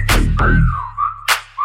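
A whistle sound effect glides downward in pitch, then returns as short steady whistle tones, riding over a song's heavy bass and punchy drum hits.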